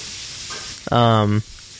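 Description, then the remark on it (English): Chicken frying in hot oil, a steady sizzle and crackle throughout, broken midway by a short, loud buzzing tone lasting about half a second. “Frying chicken.”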